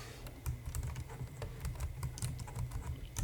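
Rapid, irregular clicking of keys on a computer keyboard, fairly loud, continuing steadily throughout with no voices.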